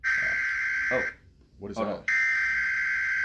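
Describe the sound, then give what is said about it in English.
A cell phone emergency broadcast alert blares a harsh, loud, steady buzzing tone, cuts off briefly while a man speaks, then resumes just as loud. “Guys, we're getting a emergency broadcast here on one of our cell phones.”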